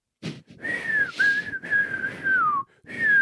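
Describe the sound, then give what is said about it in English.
A person whistles a steady, sustained tone in several long phrases, with brief gaps between them and a slight downward slide near the end, fairly loud with no talking; the whistling is used to get a nervous young child to pee. “The grandmas, they whistle.”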